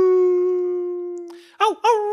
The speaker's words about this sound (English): Oh, well, those wolves are back, but we don't have to worry about them.